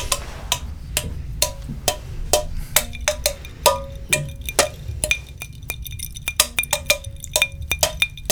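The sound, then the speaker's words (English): The Happy Birthday tune tapped out on clinking glasses: a steady run of sharp, ringing chinks at shifting pitches, each note briefly sustaining over a low background rumble. “That was happy birthday.”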